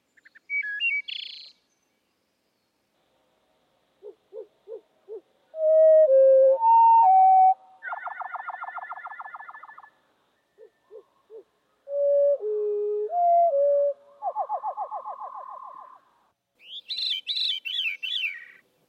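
Fluting songs of wood thrushes and veeries sung alone, with a few soft introductory notes, clear whistled tones and buzzy, rolling trills, repeated in two similar sequences with pauses between them.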